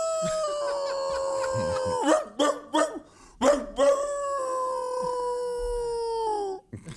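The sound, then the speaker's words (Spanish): A dog lets out a long, steady howl, breaks into a quick run of sharp barks, then returns to a second drawn-out howl that slowly sinks in pitch, loud. “Hermano, porque en Pennsylvania, tú vas un poquito para Pennsylvania y te encuentras ya los osos y los perros mandándole el mensaje a los osos que no lleguen muy temprano.”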